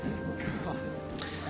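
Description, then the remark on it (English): Heavy rain suddenly pours down in a flash flood, a steady, dense, loud hiss, with voices murmuring faintly underneath throughout. “That is insane how quickly it started raining.”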